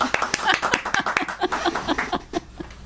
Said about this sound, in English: A great place to end. Oh, that was awesome. Round of applause.